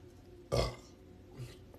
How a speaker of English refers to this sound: Even speaking about it makes me burp.